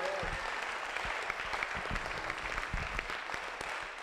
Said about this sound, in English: Are you clapping your hands for this God?